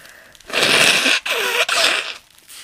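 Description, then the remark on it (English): Someone blows their nose in three loud, rasping bursts, the first longest, each a harsh rush of air with a brief honking wobble, separated by short pauses and with no talking. “I got to blow my nose.”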